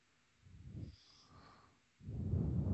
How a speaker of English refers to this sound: Oh, somebody's breathing heavy.